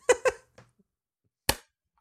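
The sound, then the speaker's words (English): Sharp hand claps made for syncing a recording, two in quick succession, a softer one, then after a pause a final loud clap, ringing briefly before silence. “I'm just adding some extra claps in there”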